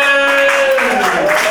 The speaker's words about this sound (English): Clap the whole time.